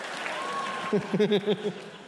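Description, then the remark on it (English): A short burst of audience applause at the end of a stand-up comedy routine, a steady wash of clapping with a few voiced whoops or laughs rising over it in the second half. “That's where that one comes to a close and gets a odd applause break.”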